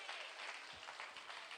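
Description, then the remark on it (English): An audience clapping their hands together in sustained, dense applause during a worship service at Antioch West, steady and fairly loud throughout, with no break in the clapping. “Would you clap your hands one more time? Give God praise.”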